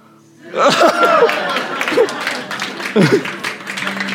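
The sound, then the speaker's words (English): An audience breaks into steady applause lasting several seconds, praising a speaker's shirt after its big reveal, with cheers and excited voices rising above the dense clapping. “Because you've just clapped and you've just praised me for my shirt.”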